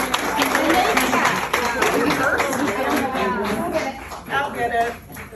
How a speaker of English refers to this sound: Shame on everybody that clapped.